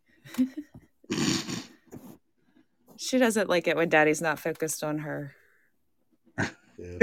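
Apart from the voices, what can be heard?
cat yowling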